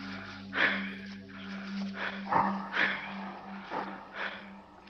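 A dog snorts and huffs in a quick series of about half a dozen short, breathy bursts, fairly quiet, over a steady low electrical hum.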